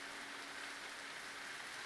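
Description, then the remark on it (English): A steady, continuous patter of blood falling like rain inside a house, an even hissing spatter with no pauses and no voices, holding at a constant level throughout. “Why is it raining blood in my house? Pipe break?”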